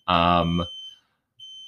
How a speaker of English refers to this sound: Okay, so our timer just went off for dinner. So go stop it and talk about your core values after. What? Just no. Go stop it. So stop beeping at least.